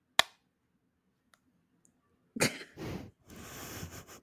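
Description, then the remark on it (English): An AirPod case snaps shut with a sharp, loud click during a sound-guessing game, then a couple of tiny ticks, and a second sharp snap followed by several seconds of breathy rustling noise. “It was my AirPod case.”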